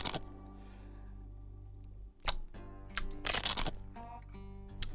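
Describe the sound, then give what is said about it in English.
Crisp crunching from a bite of pizza: one sharp crunch followed by a quick cluster of louder crackly chews, over a steady low background hum. “You can probably hear the crunching regardless of mouth open or not.”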